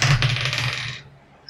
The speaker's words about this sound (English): I need a d20. We're going to let the dice decide this one.